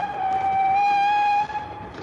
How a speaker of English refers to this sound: An incoming train clanked heavily above his head, coach after coach.